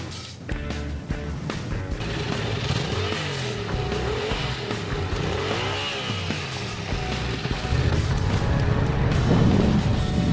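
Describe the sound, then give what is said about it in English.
A motorcycle engine revs up and down, its pitch rising and falling in repeated sweeps before settling into a loud, steady roar toward the end. “Maybe like me, you could go get a new motorcycle and take that on as a variety to kind of mix things up.”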